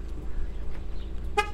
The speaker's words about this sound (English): I just got out of my car and I'm getting ready to lock it up and start my walk.